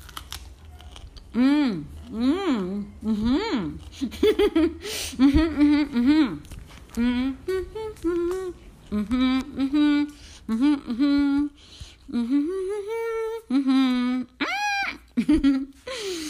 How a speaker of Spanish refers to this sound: Y como no me gusta hablar con la boca llena, estuve masticando ese brócoli riquísimo. Es riquísimo, en serio,